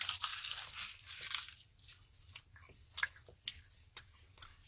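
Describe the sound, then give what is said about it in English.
Quiet chewing of gum: a burst of wet, crackly mouth noise at first, then sparse smacking clicks at irregular intervals, with no talking. “You know you don't swallow gum, right?”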